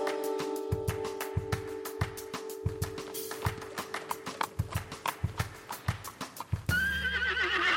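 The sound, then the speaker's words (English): A horse's hooves clip-clop in a steady rhythm, with a sustained tone humming underneath early on, then the horse lets out a loud, wavering neigh at the end. “And I will postamble at you in just a moment after this noise of a horse.”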